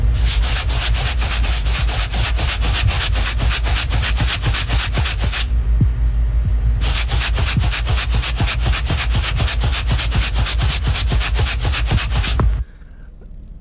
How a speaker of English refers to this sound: Sugar. Sugar. It is sugar in a container.